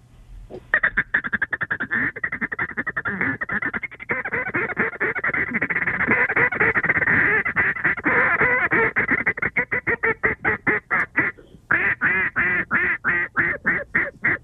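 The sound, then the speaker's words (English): A person imitates a field full of ducks, layering rapid, raspy quacks and honks in a dense, continuous, loud chatter that breaks into choppy staccato bursts toward the end. “I'll make it sound like a field full of ducks.”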